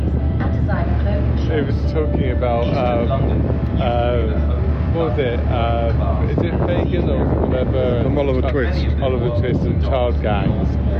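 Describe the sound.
A steady low engine rumble with buffeting wind noise against the microphone, from a river boat under way that has just left Greenwich, London, with almost no passengers aboard, with a person talking over it throughout.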